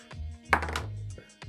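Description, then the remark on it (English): A D20 die is rolled to generate a name, clattering across a hard surface: a burst of rapid hard taps and rattles, then a few isolated knocks as it settles, landing on 18. No one speaks. “So roll another D20.”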